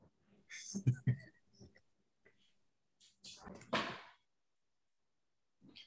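A door being shut: a couple of sharp knocks and clatters, then a longer scraping swing and a final muffled thud, with quiet room noise between.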